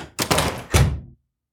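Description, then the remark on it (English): The front door of a house closes with two solid, woody thunks as the children head out, the second heavier and deeper, each ringing briefly before quiet returns. No voices. “The kids gave Mama a big hug before heading out the door.”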